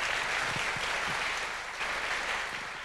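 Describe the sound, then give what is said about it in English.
A crowd claps steadily at a church service, a dense wash of many hands sustained throughout at an even level, with a few faint low voices murmuring underneath. “Yes, it's worth a clap.”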